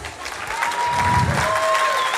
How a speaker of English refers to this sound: You can keep clapping.